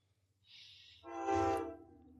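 passing train with horn

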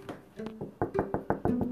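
knocking on a door

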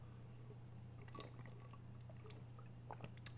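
drinking water

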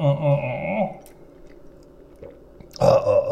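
sipping a soda

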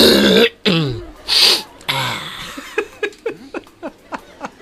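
throat clearing

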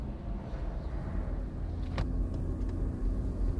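car interior road rumble

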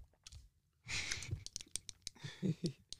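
sipping a drink

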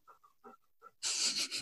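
dog panting

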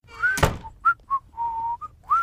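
person whistling a tune

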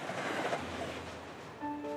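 train rolling on rails

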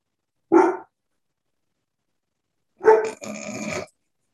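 dog barking and growling

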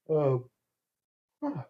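yawn

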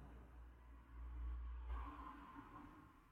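car driving past outside

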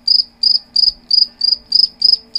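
crickets chirping sound effect

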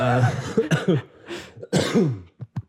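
coughing

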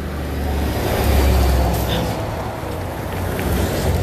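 truck passing by outdoors

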